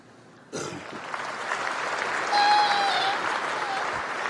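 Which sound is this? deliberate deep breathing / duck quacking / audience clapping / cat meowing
audience clapping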